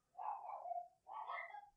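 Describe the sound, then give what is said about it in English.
A small terrier barks agitatedly at the mailman coming, in two loud, drawn-out, high-pitched bursts back to back, each lasting nearly a second, with no talking over them. “God, my dog is flipping the fuck out.”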